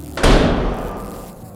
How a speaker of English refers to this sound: What was that? Sound like something crashed. Almost like a door.